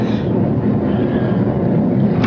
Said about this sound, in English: Oh. The rain, it started. Well, it's coming down like crazy.